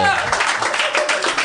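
An audience at a live stage show clapping on a performer's request, a dense, steady patter of many hands held at an even, fairly loud level for a second or two, with no clear talking over it.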